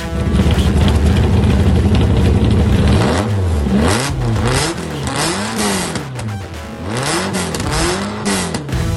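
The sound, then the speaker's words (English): A TVR Cerbera sports car engine revs repeatedly, its pitch rising and falling in a steady series of throttle blips after a sustained roar, with no talking. “those car sounds coming courtesy of Artem and his TVR Cerbra”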